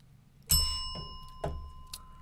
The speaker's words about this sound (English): You got to hit the bell.